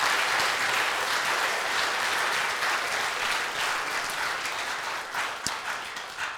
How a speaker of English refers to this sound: So thank you all for that. Would you please give those men and women one more round of applause?